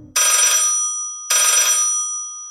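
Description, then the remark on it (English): A telephone rings twice with a bright, buzzy bell tone, each ring lasting about a second before a short pause. Fairly loud, with no voices. “And I present the worst PowerPoint presentation in modern history and slink back to my cubicle to wait 5 minutes, 10 minutes, 30 years pass, and the phone rings.”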